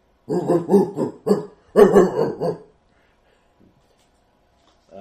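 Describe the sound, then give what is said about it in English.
Dogs outside bark in a quick run of six or so loud barks over about two seconds, approaching rapidly and growing stronger toward the end before breaking off into near silence. “Outside, you hear barking. You three, yes, hear barking, approaching rapidly.”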